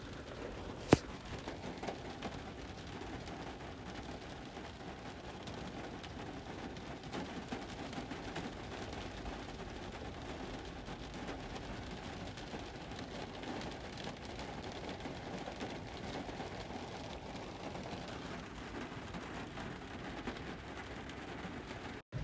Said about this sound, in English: IDK, but I just find that so peaceful, okay? Like, I don't know, like, I can go right to sleep to the sound of rain. Like, oh my gosh, it sounds so beautiful, you know? It's just like the sky is crying, like, you know?